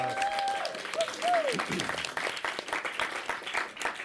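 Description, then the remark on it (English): An audience breaks into applause to welcome the speaker's cousin, a dense crackle of many hands clapping steadily throughout. A brief voice or whistle-like tone rises and falls at the start over the clapping. “Give him give him a round of applause.”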